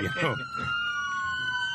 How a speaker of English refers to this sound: Oh, my God. There's another siren.